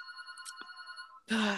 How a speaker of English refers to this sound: Shoot, the phone's going off in the background. I'm so sorry.